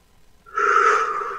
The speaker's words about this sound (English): Deep breaths.